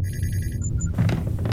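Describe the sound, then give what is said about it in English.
A sci-fi time machine, an interspatial time conveyor, powering up to calculated time and coordinates: a warbling electronic trill over a heavy low rumble, two quick high beeps, then a broad rushing roar takes over. No one speaks. “Activating interspatial time conveyor to calculated time and coordinates.”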